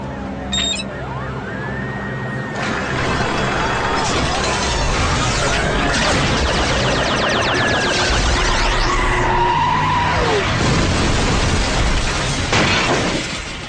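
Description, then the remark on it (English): A big truck skids with loud, wavering tire squeals over a heavy engine rumble, sustained for the full stretch, with clattering and banging mixed into the noisy chaos. “Consider this slick ride a down payment. It's a truck. Big one.”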